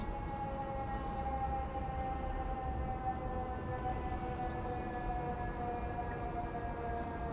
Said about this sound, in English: Sound of sirens. The sound of sirens. Prevalent in New York, always. With added context, though, much freakier these days.